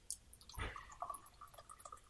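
Rover Gilbert Road Lager from Hawkers being poured from a can-shaped bottle into a glass: a short gush of liquid followed by soft trickling and fizzing bubbles, quiet, with no one talking.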